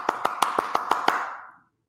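Seven crisp hand claps in a quick, steady, evenly spaced rhythm, each followed by a bright ringing tone that lingers and fades shortly after the final clap. No voices.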